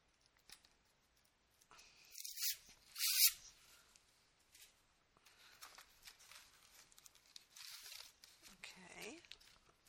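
Crisp crinkling of a plastic bag as an item is unwrapped and freed from the bag: two sharp, loud rustling bursts early on, then softer, steady handling and crackling that continues to the end.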